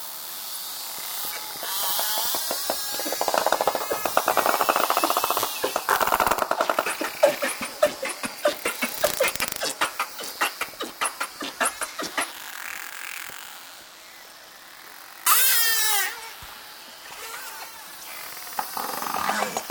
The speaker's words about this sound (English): They use a series of clicks for echolocation to find prey and communicate. This dolphin pod was recorded in Milford Sound, New Zealand, by Dr. Oliver Boisseau for the British Library CD….